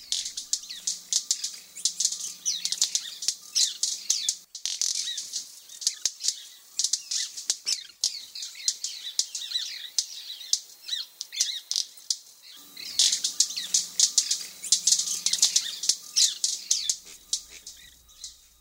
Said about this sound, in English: So here's what a white-bearded manakin sounds like.